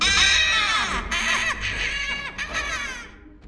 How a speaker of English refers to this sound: The remaining 2 gnomes are too terrified to stand their ground and run screaming into the dark. Slavers! Killers! Run!